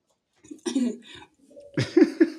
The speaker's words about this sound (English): I just coughed then at that point. Yeah, I definitely need some healthcare. Gosh, I don't know what's wrong with me.